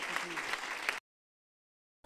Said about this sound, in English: Can we give the Lord a hand clap of praise in this place and thank Pastor McGovern for sharing with us here today? Hallelujah.